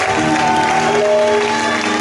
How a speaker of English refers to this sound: Oh, let's clap for the spoken word team. Let's clap for them.